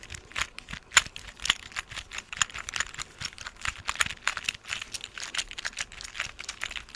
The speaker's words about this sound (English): Where I just kind of type? This is harder with long nails, but you know, just sort of typing it out, or do you like this better?